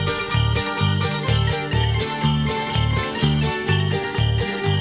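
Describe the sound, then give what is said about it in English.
Bells jingle and shake continuously as they are shaken and kicked during a stamping dance game, over a steady, pulsing music beat with a deep bass thump repeating roughly twice a second; no one speaks. “Kick those bells.”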